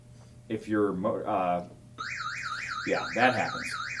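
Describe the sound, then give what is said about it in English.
A man speaks briefly, then a motorcycle alarm, set off when the bike loses the Bluetooth signal from his phone, which works as a fob, starts up with a loud, steady warbling siren that rises and falls rapidly, continuing as he talks over it. “So as soon as it loses Bluetooth signal, it just does this.”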